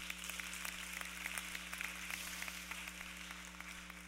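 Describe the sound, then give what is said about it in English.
A church audience claps steadily during a Sunday sermon, a dense patter of many hands with no single beat standing out, fairly soft and even throughout, over a low electrical hum. Nobody speaks. “You should clap for those, because that's a really good thing.”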